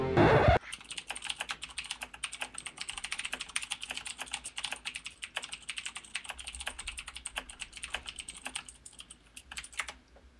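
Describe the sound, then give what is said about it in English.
Rapid, continuous typing on a computer keyboard, a dense stream of sharp clicky keystrokes for several seconds, with no voices. “Pales in comparison to that keyboard.”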